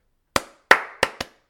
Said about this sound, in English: What they would do is have a series of 7 claps. So they would clap 5 times and we would clap the last 2 times. So it'd kind of go like this.